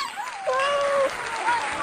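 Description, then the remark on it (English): A crowd claps steadily, a dense wash of applause with a few high whistles and cheers riding over it for a couple of seconds. “So everybody, let's give a big pause and applause”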